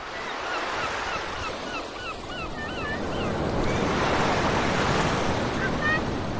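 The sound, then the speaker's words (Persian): Sea waves wash steadily onto a beach in a continuous broad rush that swells louder partway through, with scattered seagull calls sounding over the surf as the gulls dive for fish; some young people swim and dive in the sea. “و چند تایی دیگر دل به دریا زده گاهی سر به زیر آب میبرند و کمی بعد مانند نهنگی برای نفس گرفتن به سطح می آیند و سر از آب بیرون می آورند.”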